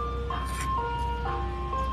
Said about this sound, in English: The branding of this ice cream truck is to annoy me in every video and go by selling poison to the kids.